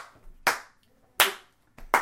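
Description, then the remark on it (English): Three sharp, loud hand claps made to synchronize the sound of a recording, spaced roughly evenly with pauses between them, each preceded by a softer rustle. No one talks. “We should just clap a couple times to synchronize all the sound.”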